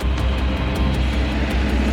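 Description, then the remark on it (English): The engine of the Spirit of America land speed record car roars loudly and steadily as it revs up and takes off across white, barren sand in an attempt on the land speed record, a dense, rumbling blast with a faint rapid pulsing, continuous with no voices. “This time he has a tail fin, he has new steering, and he revs up his engine and takes off.”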